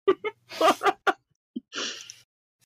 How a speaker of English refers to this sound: I'm gonna proceed to keep sneezing, though.